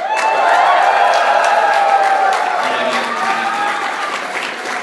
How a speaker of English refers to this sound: Alright, so cheer if you like Team Rocket.